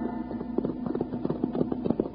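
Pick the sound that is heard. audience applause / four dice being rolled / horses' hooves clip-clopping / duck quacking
horses' hooves clip-clopping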